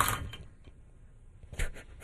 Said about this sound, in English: What was that? Did you knock over your cup full of pencils? I didn't touch anything. He tipped one over.